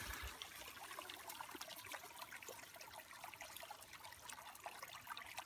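A steady, unbroken trickle of chlorine being poured into water to disinfect it, a soft hissing splash that carries on for several seconds without pause, heard alone with no voices.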